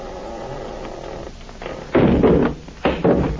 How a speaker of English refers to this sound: Let's see if it's unlocked. Yeah, it is unlocked. No light in the room. Now listen, I'm going to shove the door open, shine my light in.